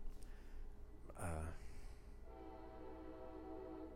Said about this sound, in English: Just give a nice pause for the train.